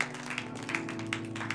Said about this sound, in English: Clap for Jesus.